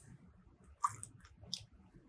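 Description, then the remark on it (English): Quiet mouth sounds of people sipping a chilled, sunrise-coloured drink, with soft wet slurps and a couple of brief sharper clicks over low background rumble, no talking. “But go ahead and take a sip, you guys.”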